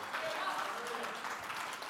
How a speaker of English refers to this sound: Can I get a witness from somebody? Come on, somebody. Come on, if you believe that, clap your hands.